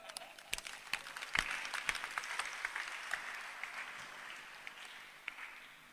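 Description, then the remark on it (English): An audience breaks into applause, a dense patter of many hands clapping at once, with a few sharp individual claps standing out before the sound gradually thins toward the end. “Clap for me.”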